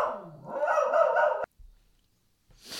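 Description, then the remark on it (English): A dog named Hazel barks at people on their own property, one loud, drawn-out, harsh bark lasting over a second that cuts off abruptly, followed by near silence and a faint rustle at the end. “My DOG, my dog, Hazel, she just decided to bark at some people who were over on their own property.”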